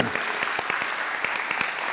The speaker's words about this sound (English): You glad you came to church today? Give God a praise clap today, would you?